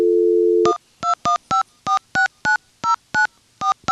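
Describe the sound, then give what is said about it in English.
A steady telephone dial tone hums briefly, then cuts to about ten crisp touch-tone keypad beeps dialed in a quick, even rhythm as an outgoing phone call is placed, loud with no voices. “I hope we can dial out.”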